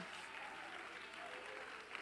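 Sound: audience clapping in worship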